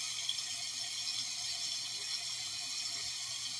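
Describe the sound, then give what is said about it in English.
A tap runs steadily, a constant bright hiss of flowing water with faint splashing as cold water is used to wash the face, no voices present. “There's some cold water on my face.”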